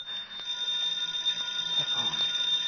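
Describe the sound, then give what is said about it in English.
A telephone rings continuously with a rapid, metallic bell trill that holds steady for a few seconds, moderately loud, with no voices. “And as it turned, it made a ringing noise.”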